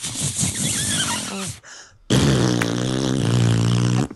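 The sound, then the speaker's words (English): Someone makes fart noises by squeezing air between cupped hands: a short sputtering burst, a brief pause, then a longer, louder, steady buzzing blat. “can you do your best fart noise for us?”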